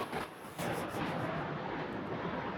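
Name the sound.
airplane flying overhead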